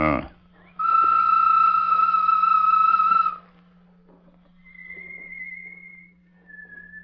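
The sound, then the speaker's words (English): In a Lone Ranger radio story, Tonto whistles a loud, long, steady note imitating a bird call. Two fainter, higher whistled replies follow over a low constant hum. “Give a bird call, Tonto.”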